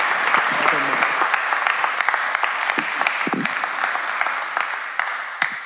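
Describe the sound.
Sustained applause from an audience fills the room, a dense steady clatter of many hands clapping at once, with a few brief voices and cheers poking through.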